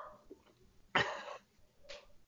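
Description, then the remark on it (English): A dog barks twice, a loud, sharp bark followed about a second later by a shorter, quieter one, with no talking around them. “Dogs, it's not even her.”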